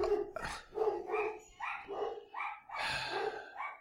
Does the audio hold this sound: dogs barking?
yes